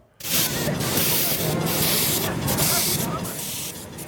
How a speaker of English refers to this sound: The unmistakable sound of steam power pulling a load of happy passengers at Confederation Park. The Burnaby Central Miniature Railway is celebrating its 30th year.